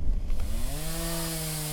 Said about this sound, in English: Sounds of chainsaws and machetes, not from loggers, but our drivers. A storm brought massive wind toppling trees and huge rain all at once, which is unusual.